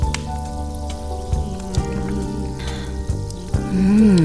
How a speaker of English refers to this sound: Introducing Mr. Spritzer, the only home carbonation device made exclusively for wine. Now, is that fizzy enough for you?